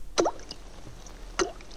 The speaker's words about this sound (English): Whenever they had a prisoner with information who would not speak, they would tie him prone on a table and gently drip single droplets of water upon his forehead until he spoke.